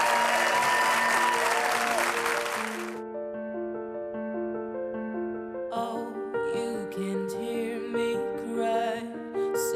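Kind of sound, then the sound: crowd, studio audience applause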